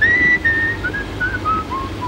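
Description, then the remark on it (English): A man whistles a light, cheerful melody, clear, with pitch stepping through several short notes over a low background hum, as the character Gerald is escorted away by Goddard. “And a cheerful, whistling Gerald is escorted away by Goddard.”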